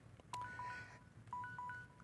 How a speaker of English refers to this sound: I set a timer so I wouldn't be too long. And it already went off, so that's weird.